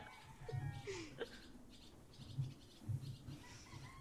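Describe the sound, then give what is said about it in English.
Someone imitates a goose, letting out a few nasal, honking bursts of uneven length at a moderate volume over a low background murmur. “So, … feels amenable to this and lets out a nice, decent size goose honk.”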